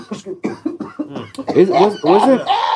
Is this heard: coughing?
yes